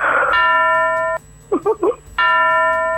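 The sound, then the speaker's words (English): Bells ring out in two loud, sustained bursts of bright, layered tones, separated by a short pause in which a voice briefly sounds. “Let's just ring some bells for him.”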